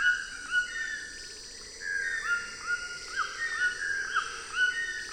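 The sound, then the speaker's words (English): A white-throated toucan gives rich musical whistles, repeating over rougher, yelping cries from a pair of channel-billed toucans in the background, the overlapping calls of the two species rising and falling steadily with no one speaking. “The rich musical whistles are from a white-throated toucan, while the rough cheers in the background are from a pair of channel-billed toucans.”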